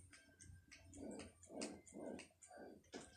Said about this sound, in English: Now, can you please be quiet for my podcast? I'm sorry, my dog is being quite of an ass toward me.